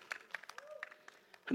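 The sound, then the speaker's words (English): A handful of scattered, irregular claps from an audience, sharp and sparse rather than a full round of applause, with a brief voice sounding at the very end. “Clap.”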